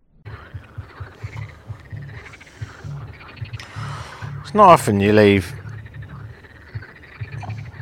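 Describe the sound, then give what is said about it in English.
A chorus of frogs croaks steadily at night in a town in Poland, a rhythmic, pulsing drone with a louder burst of calls midway through, heard while walking home from a nightclub. A man speaks quietly over the chorus. “It's not often you leave a nightclub to the sound of frogs. That's what's happening right now.”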